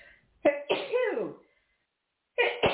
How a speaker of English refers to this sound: and I'm going to sneeze.